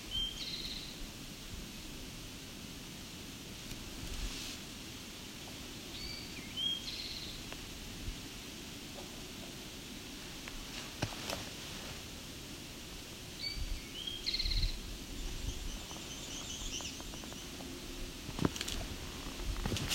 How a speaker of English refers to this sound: So he's moving around a bit on the flats. Seems to be him and I think, an American Red Start.